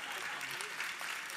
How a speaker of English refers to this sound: 30 years is a long time. I said I've been here 30 years. Just give me a clap for that, okay, right?